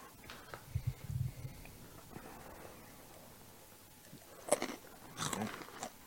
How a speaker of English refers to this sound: Oh, corn. Yeah, chew right in the mic. Yeah. Oh, I'm going to smell these things. Little corn nuts for sure. A little fresh sea salt.